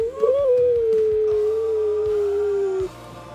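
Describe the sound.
A voice imitates a whale call: one long, loud moan that glides slowly downward in pitch for nearly three seconds, then stops abruptly over faint low rhythmic thumps.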